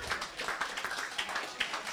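An audience applauds the players after a game in a steady, dense wash of many hands clapping, with a few sharper claps standing out above the crackle throughout the two seconds.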